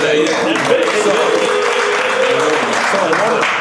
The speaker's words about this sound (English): Y'all should clap for that if you know.